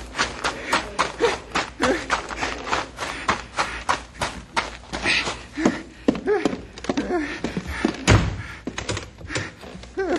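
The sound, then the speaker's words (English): The back door of a bank slams shut with a heavy thud and is locked, set among a busy run of quick clattering knocks and scuffling footsteps. “There's the bear. Locked in the bank.”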